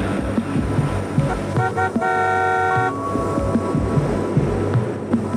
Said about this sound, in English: That honk is Felicia and Barkley pulling up in a car. Keep that in mind as we keep going.